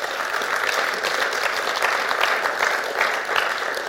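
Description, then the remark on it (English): An audience claps steadily for several seconds, a dense, even patter of many hands at a fairly loud level with no voices standing out. “So we should give them a clap, shouldn't we?”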